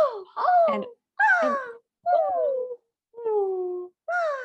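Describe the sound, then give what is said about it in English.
A voice imitates Cinderella's exaggerated, theatrical gasps: five short, voiced bursts with swooping pitch, fairly loud, separated by brief silent pauses. “She gasps a lot. She does a lot gasp.”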